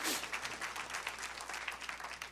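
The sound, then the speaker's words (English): A crowd applauds steadily, many hands clapping in a dense, sustained patter at moderate volume for a couple of seconds, with no voices standing out; applause honoring a cleaning crew. “all of her crew, give them a great round of applause.”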